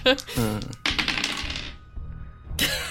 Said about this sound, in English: And I'm gonna roll some dice and hopefully it's gonna mean something that's gonna back that up.